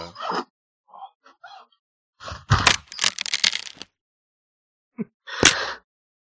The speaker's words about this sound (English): Let me get the zipper open.